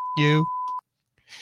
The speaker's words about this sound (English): I mean, does my beeper work? Can you guys hear that?